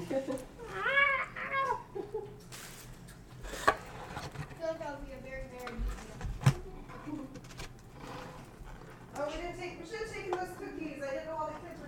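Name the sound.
cat meowing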